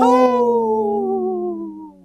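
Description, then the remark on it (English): A lone wolf howl, one long, smooth, mournful tone that holds steady and then slowly slides downward in pitch, tapering off at the end with no one talking. “This portion of the show is sponsored by Howling for Wolves, protecting wolves for future generations.”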